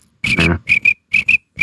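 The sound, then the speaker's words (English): Crickets chirp in a steady rhythm of short paired trills, loud, with no voices present and brief silences between each pair. “Yep, crickets. That's all it is.”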